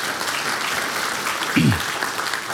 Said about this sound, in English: Let me ask you, though, who are you applauding?